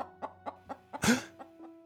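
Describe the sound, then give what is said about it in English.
A lone chicken, emerging from brush, clucks in a quick, regular series of short notes, with one louder, harsher squawk breaking in near the middle before the soft clucking resumes. “a lone chicken emerged from the brush and wandered directly into his path.”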